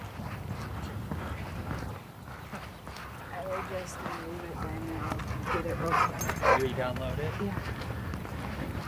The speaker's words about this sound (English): It's a big dog. Some sort of husky or malamute or... hip-sized canine. Distinctive markings.